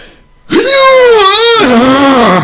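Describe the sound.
A voice lets out a loud, sustained, strained yell imitating a samurai warrior cry, wavering in pitch and then dropping lower for a long held finish, about two seconds in all.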